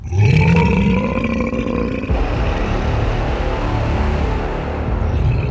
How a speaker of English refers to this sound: Just then, we heard the stone figure growl so loud way behind us.